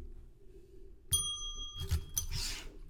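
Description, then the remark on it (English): A single bright bell rings out clearly and sustains its metallic tone for a couple of seconds, with a few brief noisy bursts and faint background sounds underneath. “Can you ring that bell one more time for me?”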